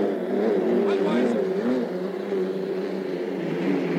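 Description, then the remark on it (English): Powerful racing hydroplane engines roar in a steady, loud drone with wavering pitch, sustained throughout as two boats race side by side, the Budweiser on the inside and the Pay and Pack on the outside. “We got a real boat race, because on the inside is the Budweiser, and the outside the Pay and Pack.”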